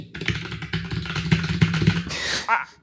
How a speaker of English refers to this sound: joined by a man with the world's loudest keyboard.